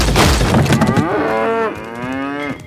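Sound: cows mooing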